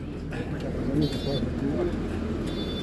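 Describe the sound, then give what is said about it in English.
A very colourful bus rumbles steadily through traffic, its low engine drone continuous, with indistinct voices murmuring underneath and a few faint high tones drifting in. “Well, the driver of our very colourful bus was also very jolly”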